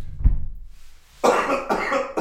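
A man coughs close to the microphone: a brief muffled hack, a short pause, then two loud, harsh, raspy coughs in quick succession.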